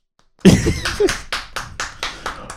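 A short burst of applause: steady, evenly spaced hand claps, roughly four per second, loud at first and then fading slightly, with a brief voiced exclamation at the start.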